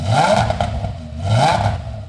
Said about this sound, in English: And that's a 10-cylinder Audi he's revving up in the shop.